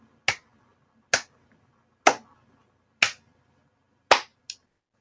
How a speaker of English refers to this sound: Slow clap entrance, because that's how you meet the love of your life.